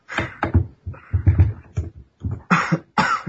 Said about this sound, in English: And cough.